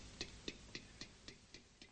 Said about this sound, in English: It's a tick and a tock of the man made clock. It's a tick and a tock of the man made clock. Tick ticka ticka tock tock.